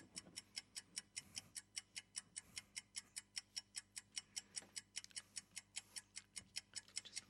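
A quiz countdown clock ticks steadily and briskly, about three to four crisp clicks per second, loud, with no one talking over it, timing about 20 seconds.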